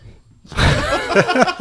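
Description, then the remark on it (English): After a brief silence, a sudden hiccup erupts into a breathy, gasping vocal burst with a giggly, uneven texture and a couple of quick catches near the end. “…, where did the hiccups come from? I don't know. They're back.”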